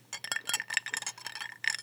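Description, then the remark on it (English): About two little ice cubes are added to a glass holding a cocktail of Chinar and Herborista Pianura vermouth, clinking against the glass in a quick, uneven run of bright, ringing taps with a high glassy tone, fairly soft overall, with no talking. “So I'm adding about two little ice cubes to help.”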